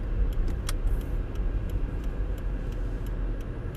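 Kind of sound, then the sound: vehicle, car driving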